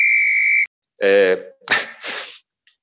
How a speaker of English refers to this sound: Oh, sorry, put a beep here.